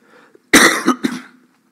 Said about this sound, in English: Obviously, the cough's not entirely gone yet.